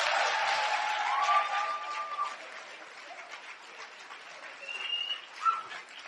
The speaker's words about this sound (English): Applaudissez pour le Seigneur.